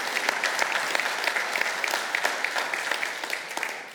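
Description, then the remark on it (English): An audience applauds throughout, a dense, steady patter of many hands clapping at an even loudness, with no one speaking over it. “I don't know if you can't cheer and clap for that.”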